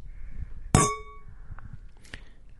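Wine glasses clink together in a toast: one bright, sharp strike that rings out with high, shimmering tones and fades, followed by a couple of softer, brief taps.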